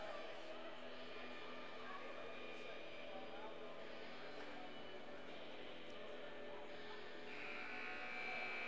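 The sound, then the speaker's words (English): A loud buzzer at an ice hockey All-Star Game drones steadily for several seconds, signalling the All-Stars onto the ice for the 3-minute warm-up, a harsh, sustained tone rich in overtones that rides over a constant roar of crowd noise. “As the buzzer sounds to have the All-Stars come out onto the ice to begin the 3-minute warm-up.”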